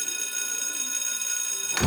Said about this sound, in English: That's the bell. School's out.